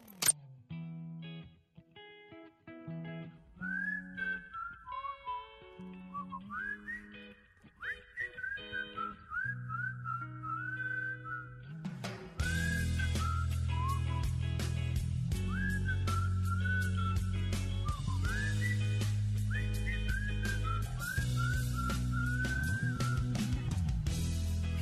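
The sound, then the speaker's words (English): A whistled melody with bending, sliding notes floats over a sparse backing, then full drums and bass kick in halfway and the whistling carries on over the louder, busier song. “every song shouldn't have whistling. And it shouldn't be that no songs have whistling.”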